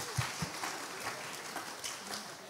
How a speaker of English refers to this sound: You people, clap for my wife. I have a very brilliant woman.